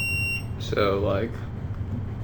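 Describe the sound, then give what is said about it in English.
A short, steady electronic quiz buzzer beep, high-pitched and tonal, lasting under half a second, followed by a brief voice speaking over a low background hum. “Good buzz.”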